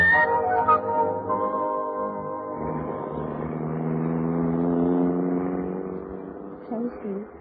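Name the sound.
car engine driving away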